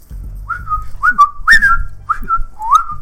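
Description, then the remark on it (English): A person whistles a short, bird-like call in a series of rising and falling chirped notes, fairly loud, imitating a cockatiel, with low rumbling noise underneath. “Kind of like when you whistle, like one of the first things any parrot or cockatiel or anything knows is that.”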